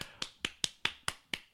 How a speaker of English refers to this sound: So that was me clapping, just to clarify, because I know you mentioned boudoir before.